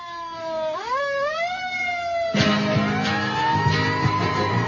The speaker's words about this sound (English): Be sure and cut out the sirens because we're on radio. I don't want to scare people.